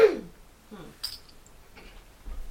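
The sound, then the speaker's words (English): A single short cough at the very start, not loud, followed by a few faint scattered rustles and clicks in otherwise quiet surroundings. “Well, but apart from the cough.”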